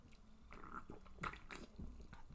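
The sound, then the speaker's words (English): A loud, wet slurp of fizzy seltzer drunk from a can, with bubbly, gurgling liquid sounds and a few sharp sucking bursts over about two seconds, no talking. “That was the biggest slurp I've ever taken on a Seltzercast.”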